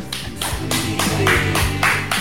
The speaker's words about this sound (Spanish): Volvieron los aplaudidores, Ortuño. Me olvide lo que lo hace aplaudir, ¿eh? Hacía meses que no aplaudían.